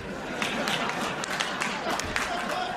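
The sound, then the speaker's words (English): An audience claps steadily for about three seconds, a dense, crackling wash of many hands with a few sharper claps popping out, and faint crowd voices mixed underneath. “Look, don't clap.”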